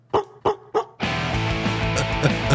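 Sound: dog barking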